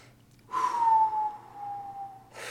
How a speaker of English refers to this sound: So just right now, let's just take a breath. Okay? In through our nose, out through our mouth.